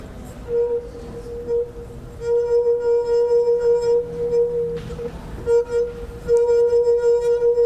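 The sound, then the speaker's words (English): A person rubs the rim of a wine glass, exciting its resonance so it rings like a bell: one clear, steady ringing tone that swells and wavers slightly over several seconds, briefly dipping before rising again, with no talking. “Okay, what's happening is I'm exciting the resonance of this cup.”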